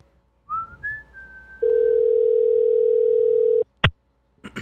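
An outgoing phone call's ringing tone sounds as one long, steady electronic beep lasting about two seconds, preceded by faint gliding tones and low background murmur, then cut off by a sharp click.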